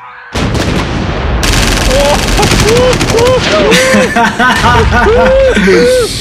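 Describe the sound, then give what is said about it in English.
Loud gunshot sound effects fire in rapid machine-gun bursts for several seconds, dense, while voices shout and laugh underneath. “You better bring the gunshots.”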